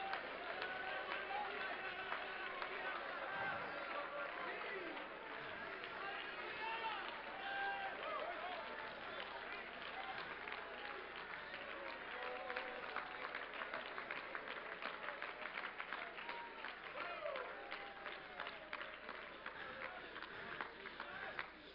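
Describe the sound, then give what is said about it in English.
A large crowd claps and shouts praise to God continuously, a dense wash of applause mixed with cheering voices and whoops that stays loud and steady for about twenty seconds. “Oh, take about 20 seconds and praise him with everything that is within you.”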